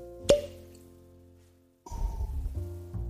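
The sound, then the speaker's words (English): A single sharp cork pop rings out near the start, followed by a short ringing decay, then a stretch of louder fizzing and shuffling noise. “Go for the pop.”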